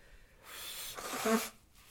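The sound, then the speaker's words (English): A single nose blow: a breathy, hissing rush of air lasting about a second, ending in a brief nasal honk before it cuts off. No talking. “I have to stop to blow my nose.”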